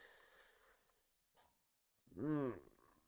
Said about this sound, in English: I apologize. I never yawn during a podcast, but when you're watching this team continuously, you have no other thing to do than yawn or laugh or cry, whatever the emotion is.